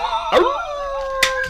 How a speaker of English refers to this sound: They play this sound effect. You hear this sound effect, you're going to recognize it. I guarantee you. It's from cartoons. It's from other movies. This is a stock coyote sound effect that I've heard a million times. But it's this little yappy dog.